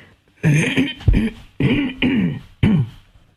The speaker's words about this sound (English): I'm sorry for clearing my throat into the microphone here.